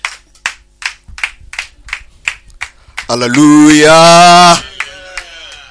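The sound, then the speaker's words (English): Steady rhythmic clapping at a church service, about three claps per second, fills the first few seconds, then a loud sustained vocal cry rises over it before fading into quieter voices. “A round of applause unto Jesus.”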